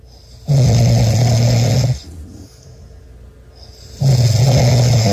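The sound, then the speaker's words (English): Two loud, rasping snores, from either a dog or a grown man, secretly recorded at night, separated by a quieter inhale, each a long rattling rumble with no talking. “I want you to see if you can pick out who is the dog snoring and who is the grown man.”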